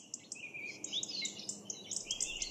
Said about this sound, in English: Birds like these are the opposite of noise pollution for me. I love birds, but often their cheerful chirping and warbling can be cut short by noise pollution.